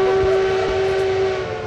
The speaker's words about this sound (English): Oh, I hear that train a-coming. It's coming around.